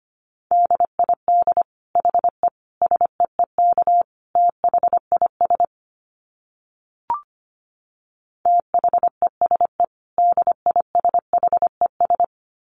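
Morse code sent at 25 words per minute: a steady mid-pitched tone keyed into quick dits and dahs, in two runs separated by a silent gap with a single faint click.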